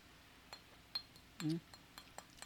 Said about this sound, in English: So I'm going to, we'll say, Colonel Ange, we'll say cheers. Cheers. In our plastic tumblers. On the patio.